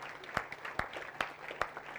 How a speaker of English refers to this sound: Should we just give Jesus a round of applause? Say thank you, Jesus.